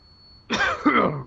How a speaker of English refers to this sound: Oh, bit of coughing.